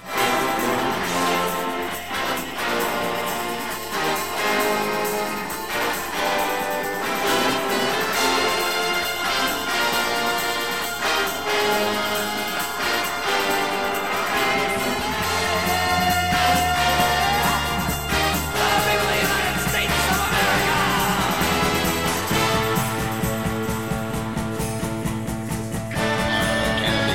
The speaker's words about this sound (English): In this section, we've got the brass playing heavier than ever. There's a steady buildup on the drums and the bass, more sounds of a radio or TV broadcast in the background. There's a lot going on here.